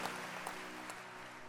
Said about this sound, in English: Clap for Jesus and you may be seated.